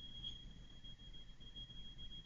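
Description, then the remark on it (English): A hotel alarm sounds as one steady, unbroken high-pitched tone, faint, over a low rumbling background hum with no voices. “He's in a hotel, and the alarm went off.”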